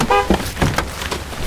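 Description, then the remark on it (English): A single short car horn honk, a bright harmonic toot, sounds at the start as the unlock button on the car keys is pressed, followed by a quick click and scattered thuds and rustling noise. “Hit the unlock button again!”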